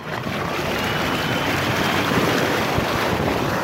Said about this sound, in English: They're calling it a sea bubble, a zero-emissions boat that appears to fly above the water.